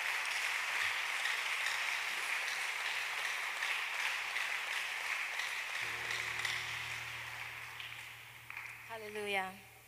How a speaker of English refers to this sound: Clap for her, encourage her as she's coming.